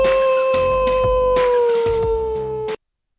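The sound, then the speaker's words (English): A coyote lets out a long, loud, sustained howl that slowly slides downward in pitch, with faint yips underneath, before cutting off abruptly after a few seconds. “Hold it. Stop the coyote.”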